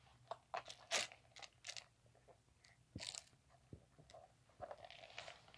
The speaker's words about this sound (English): Just let me get a sip of my root beer drink here real quick.